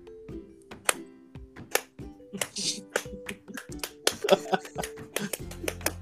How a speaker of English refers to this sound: I knew it was gonna come in with the slow clap. Alright. One clap at a time.